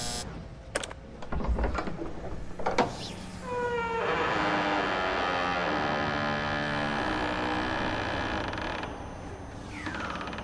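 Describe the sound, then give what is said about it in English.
A few sharp clicks like a latch, then a long, loud, drawn-out creak with wavering pitch as the door of a doctor's house swings slowly open, lasting several seconds before fading. “Ooh, that's a scary door.”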